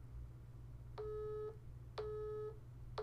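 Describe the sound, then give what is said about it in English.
A telephone busy tone repeats in two steady half-second pulses with equal gaps, clear over a low background hum, with no voices. “Engaged. 24 bloody 7.”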